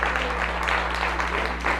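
A round of applause: dense, crackling clapping from many hands, steady and fairly loud for about two seconds, with a low steady hum underneath and no talking.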